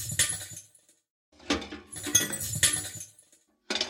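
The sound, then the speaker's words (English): Small shards of broken glass tinkle and scrape as they are swept up in a few short strokes, with brief pauses between bursts of brushing and clinking. “and combined that with a sweeping noise, and that gives you the impression of someone sweeping up little bits of glass.”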